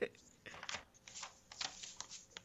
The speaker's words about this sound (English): hold on, let me flip through my notes real quick so I can make sure I get this right.